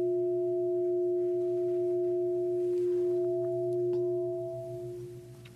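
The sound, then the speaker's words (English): A bell rings loudly, holding a steady, layered metallic tone with several clear pitches that hums on for several seconds and slowly begins to fade at the end. No one speaks. “So what happens right now in the midst of this flow of phenomena if I do something like ring the bell, okay? I ring the bell really loud.”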